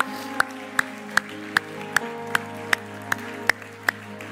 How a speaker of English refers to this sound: Could we give Him one more hand clap of praise?